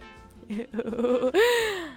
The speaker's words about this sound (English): Me breathing heavy into this mic right now.